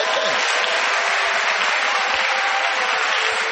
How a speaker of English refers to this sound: I mean, what kind of country is a great country? Clap for Ghana.